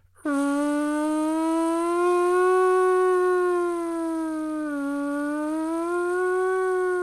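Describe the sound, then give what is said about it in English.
A loud air raid siren in Paris, sounding during a monthly midday test of the warning system, kicks in abruptly and holds a steady, wailing tone with a slight rise and dip in pitch, sounding continuously for several seconds with no voices. “And we hear the fucking air raid sirens going off.”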